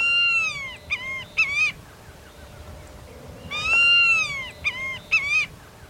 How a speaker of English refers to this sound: The coastal plain of Texas runs from the southern tip of the state to southwestern Louisiana. Here, many tropical species of birds reach the northern limit of their ranges, including this large bird of prey, the white-tailed hawk.